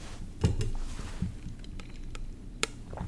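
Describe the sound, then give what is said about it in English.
Someone takes a sip of water: a few soft gulps and wet mouth sounds, then a sharp little click, all quiet with no talking. “Okay, needed a drink of water there.”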